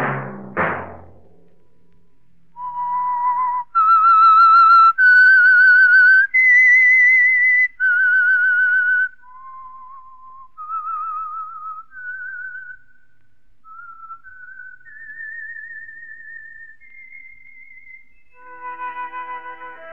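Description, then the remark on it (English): A lone whistled melody serving as a radio program's theme signal, clear, made of sustained, slightly wavering notes that step up and down in a slow tune, ending on a fuller held tone. No one speaks. “Whistle be your signal for the Signal Oil program, The Whistler, each Wednesday night at this same time”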